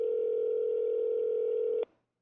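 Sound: telephone ringing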